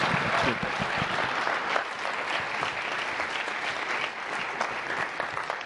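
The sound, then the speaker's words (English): A crowd applauds guests for sharing, a steady, dense wash of many hands clapping at an even, fairly loud level throughout, with no voices standing out. “Well, you guys want to give these guys a round of applause for sharing with us today.”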